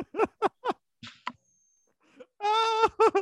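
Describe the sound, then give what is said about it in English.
A person imitates a goat's bleat with short wavering vocal bursts, then a long quavering harmonic bleat near the end, fairly loud. “The throat goat, guys.”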